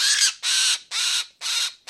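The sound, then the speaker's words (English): A red-bellied woodpecker, held in hand while being processed for banding, gives loud, harsh, raspy calls in a steady series, about two per second, each a scratchy burst with short gaps between and no talking. “Red bellies are notorious for this.”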